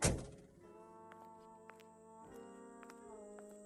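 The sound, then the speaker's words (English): A single heavy car door thunks shut right at the start, loud, as someone gets out of a car at night in a neighborhood near Echo Park, then fades into a steady low hum with a few faint ticks and clicks. “I sit in the car for a moment. I take a breath, get out, and walk into the past.”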